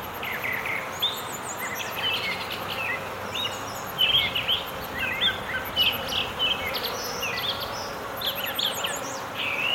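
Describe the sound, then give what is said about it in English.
A dense, steady drone of many bees buzzing near a beehive in a backyard, with scattered chirps and calls of birds in a dawn chorus in nearby trees rising over the hum throughout. “Well, this orchestration was recorded in my backyard near a beehive, with birds joining in a dawn chorus in the trees nearby.”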